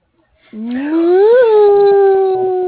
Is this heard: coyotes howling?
yes